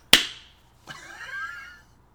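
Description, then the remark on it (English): A single sharp, loud hand clap, made to sync audio, rings out, followed about a second later by a softer burst with a brief wavering, ringing tail that fades out. No one speaks. “Can I get a clap out of you?”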